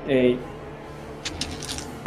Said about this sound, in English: All good. That's just quite a lot of dice. Yes, it is.